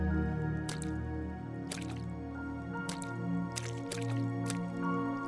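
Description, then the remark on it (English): Wet, squelchy splashes of Peppa Pig and Daddy Giraffe jumping in muddy puddles on grass, made by water dripping from a car, a handful of irregular slaps and drips, set against a steady, sustained musical drone. “Daddy Giraffe, of course, agrees so everyone finds their own puddle to jump around in and enjoy.”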